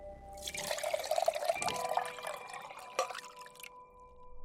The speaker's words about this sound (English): It looks like he's filling it with water.